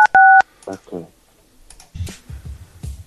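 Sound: telephone dialing tones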